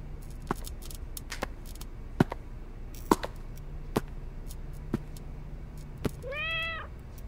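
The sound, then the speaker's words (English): A pitch-black kitten on a workbench beside a small saucer gives a single short, high meow near the end, after a series of sharp, scattered clicks and taps over a faint low hum. No one speaks. “There was a kitten on his workbench, pitch black, purring happily next to a little saucer.”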